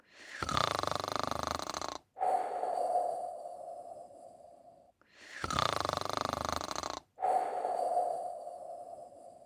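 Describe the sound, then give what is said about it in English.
A voice imitates a crocodile snoring loudly, two long cycles each made of a rough, rasping inhale followed by a whistling, droning exhale, with brief pauses between them. “And before you could say snip, snap, snout, the crocodile was snoring.”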